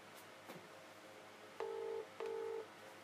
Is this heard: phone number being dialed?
yes